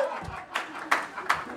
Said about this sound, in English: But yeah, this is a live recording, so, you know, don't be afraid to clap or anything like that.